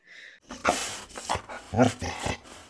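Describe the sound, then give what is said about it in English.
A pet dog named Maggie barks four times in uneven bursts, fairly loud, after a short high-pitched whine at the start; no one speaks. “I think this would be a good time if we could ask that bitch over there.”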